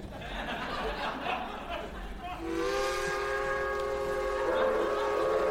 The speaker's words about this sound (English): Is that a westerly train I hear? The rough lullaby of the rail. 'Tis many a bowing soul have fallen asleep to her lowing land shanty.